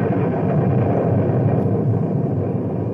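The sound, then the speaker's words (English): Thunder from an electrical storm over a swaying bridge across a river, with lightning flashing one flash after another, rolls in a loud, steady low rumble that fills the whole moment without letting up, with no sharp crack standing out and no voices. “The lightning played about us wickedly, one flash after another, so that I could have read a newspaper by it.”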